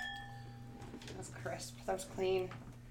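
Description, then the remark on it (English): Glasses clink together in a toast among friends during an evening recording session, a couple of bright ringing taps near the end, over a steady low hum and faint background voices. “Cheers, cheers.”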